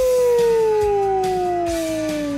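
A wolf lets out one long, loud howl that holds steady and slowly slides downward in pitch, with a faint rhythmic thumping in the background.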